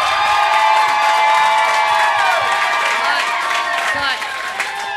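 An audience bursts into sustained clapping and cheering as a vote for a contestant, a dense, loud wash of applause with shouts and whoops layered throughout, tapering slightly toward the end.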